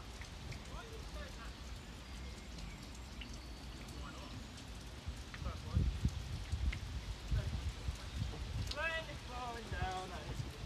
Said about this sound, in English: Going to take a moment and listen to the sound of the rain.